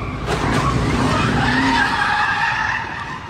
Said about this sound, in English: this car literally just hit this car in the tail end. The car tried to drive off. It chased him down, hit him in the tail end again, completely wiped him out.